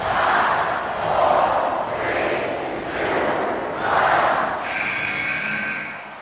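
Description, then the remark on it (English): A large wrestling crowd roars and cheers loudly as Kurt Angle nails Jack Jester with an Angle slam over the top rope and down to the floor, the noise swelling in repeated waves over several seconds, a dense wall of voices with no distinct speech. “The crowd popping huge as Jack Jester is gone.”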